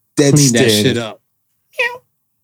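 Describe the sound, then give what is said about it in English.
A person vocally imitates a cat's meow, one long drawn-out mew lasting about a second, then a brief pause and a shorter, higher meow-like cry, loud. “That's what the meow means.”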